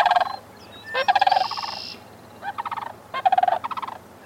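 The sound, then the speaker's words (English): Sandhill cranes call in a duet with a prospective partner, loud rolling, rattling bugles in about four overlapping bursts, with no one speaking. “Most cranes, like these sandhill cranes, duet with prospective partners for years before they begin breeding.”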